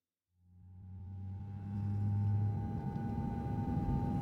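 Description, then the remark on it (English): A deep, steady airplane engine rumble heard in the cockpit swells up after a brief silence and holds loud and constant, with a low droning hum and a thin tonal whine riding above it. “And here we are in the cockpit of a plane.”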